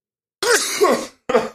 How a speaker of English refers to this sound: Excuse me. Nice. I considered muting it, but I'm like, no, why let a good sneeze go to waste? You had a nice new microphone and you just destroyed it.